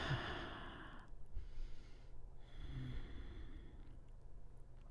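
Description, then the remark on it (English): Slow, deep breaths taken during a gentle yoga spinal twist lying on the back: a long airy exhale like a sigh, followed by steady, drawn-out inhales and exhales with no talking. “Don't let go of the deep breathing yet.”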